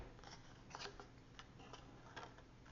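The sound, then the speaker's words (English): Scissors trim off the edges of tape on a journal page, a few crisp cuts at uneven intervals with soft rustling of tape or paper between them; no one speaks. “I took my scissors and I trimmed off”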